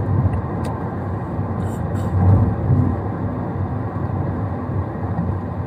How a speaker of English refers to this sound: But it's a good night drive, like 2 a.m. night drive, which I really enjoy.